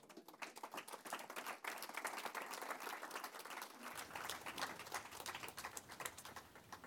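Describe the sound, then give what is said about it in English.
A crowd claps steadily and continuously for a woman, dense overlapping applause lasting several seconds, loud, with no talking over it. “Vamos a darle un aplauso a nuestra hermana”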